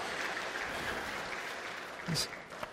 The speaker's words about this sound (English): So I guess we'll clap for her even though she's not here.